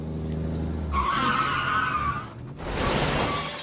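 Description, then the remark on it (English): A car engine rumbles, then tires screech loudly in a long skid lasting over a second as a massive truck hits the car and spins it to the left, followed by a harsh, rough burst of noise as the vehicle lurches. No voices. “He's hit my car. His massive truck spins my car to the left.”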